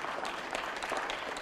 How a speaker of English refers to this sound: Come on, clap your hand. Thank God for that.